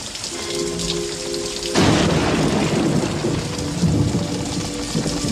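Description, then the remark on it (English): Heavy rain pours steadily at night, around 11 o'clock, as a loud crack and rumble of thunder breaks in about two seconds in, then lingers under the downpour; a faint tonal hum sits beneath the opening moments. “The three of us going through the garbage at 11 o'clock at night in the middle of a rainstorm?”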